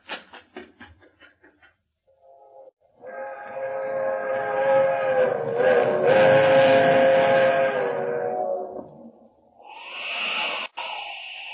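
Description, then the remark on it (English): A train horn blares in a long, loud sustained chord as a fast train approaches, whistling for the highway, its rumble building and swelling before a brief dip and a final higher blast. “There's the train. Traveling fast, all right.”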